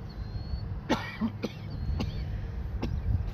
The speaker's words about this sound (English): Fix your cough. People's going to think you have corona. I'm trying.